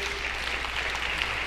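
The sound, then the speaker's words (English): A church audience claps together in steady, dense applause as a hand clap of praise to God, a continuous wash of many hands with no voices standing out, the sound holding at an even level throughout. “Can we give God a hand clap of praise today?”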